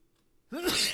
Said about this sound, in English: Excuse me. I had to sneeze there. Sorry, man.